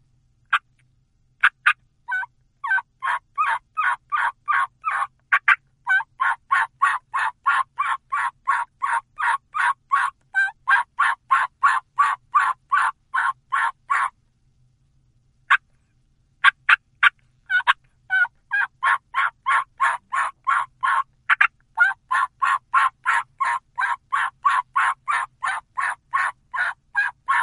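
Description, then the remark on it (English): A long, steady string of wild turkey old hen assembly yelps, loud and growing more pleading as it goes, repeating in a fast even rhythm with a brief pause midway before resuming. “And it's a series of yelps that just get more pleading as it goes.”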